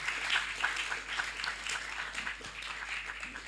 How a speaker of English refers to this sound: Let's do it for them. Let's clap for them. Amen. Wow. But even bigger, let's clap for Jesus. Amen.